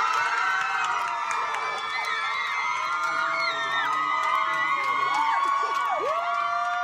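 A crowd in Chicago cheers and shouts continuously at a steady, loud level, many voices whooping and yelling together with rising and falling high-pitched calls throughout, no distinct speech.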